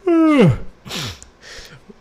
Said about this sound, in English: So, excuse me, I have to yawn.